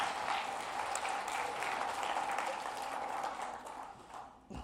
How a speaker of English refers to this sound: So give her a round of applause.